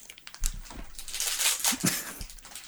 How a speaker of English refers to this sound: Who is that, dog? Somebody's licking the candy wrapper.